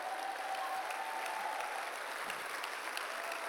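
A church audience applauds steadily, giving the Lord a clap, a dense wash of many hands clapping at an even level throughout, with no voices standing out.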